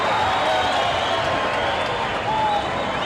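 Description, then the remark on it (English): A loud, dense crowd roars and cheers without a break at a wrestling event as wrestler Ivan Putski comes down the aisle to the ring, a steady wash of shouting and clapping that swells slightly near the end. “Crowd going bananas here for the Puts.”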